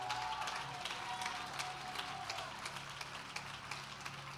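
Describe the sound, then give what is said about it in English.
An audience claps together as a hand clap of praise for Jesus, a dense, steady burst of applause, many hands overlapping into a continuous crackle that holds at an even level throughout. “Now, if you love Jesus, just give him a big hand clap of praise, will you?”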